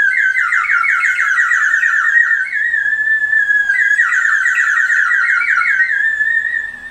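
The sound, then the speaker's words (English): A whistle filled with water is blown steadily for several seconds, producing a loud, warbling, bubbly trill that rises and falls in pitch in repeated waves, with no one speaking. “I'm just blowing in it. I'm not even doing anything. Oh, it's because of the water. Yeah. It's got water in it.”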